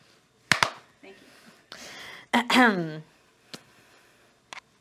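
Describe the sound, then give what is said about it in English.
Two sharp hand claps land in quick succession as a slate marker for take 45 of a recording, followed by a short burst of speech and then a couple of fainter, isolated snaps. “December 11th, clap, clap.”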